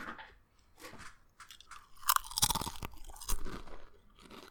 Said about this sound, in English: All right, well, look, feel free to take a bite